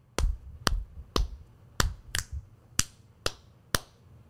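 Eight crisp finger snaps in a steady beat, each a sharp bright crack with a short tail, sounding alone with no voices.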